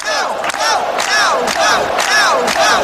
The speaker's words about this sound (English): So you think Nick is going to feel that? Sure he is. I mean, they're yelling outside already. It's going to blow him right apart, I can tell you that right now.